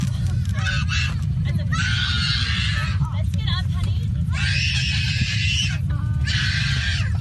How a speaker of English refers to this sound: They did get the Wi-Fi going while in flight. They did get the iPad going, and still the kid is screaming.